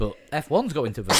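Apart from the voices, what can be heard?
sneeze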